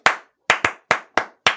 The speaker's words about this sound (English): I was out here clapping it up.